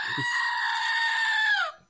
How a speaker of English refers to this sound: Here, maybe the screaming goat has an idea.